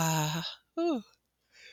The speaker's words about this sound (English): It's good when you yawn. That means you're really into it. Ah, and that's also releasing.